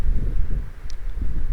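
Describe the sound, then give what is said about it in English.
A gust of wind buffets the microphone, producing a steady, rumbling low roar that swells and dips unevenly for a moment with no voices present. “Alright, and I hate to be ending the episode right when a gust of wind is coming in.”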